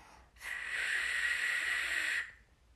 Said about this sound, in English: No. This whistle isn't working.